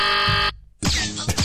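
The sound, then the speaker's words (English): A loud, harsh game-show buzzer blares for about half a second, cuts off abruptly, and after a brief silence a second noisy, rasping burst follows. “Give him an extra buzzer.”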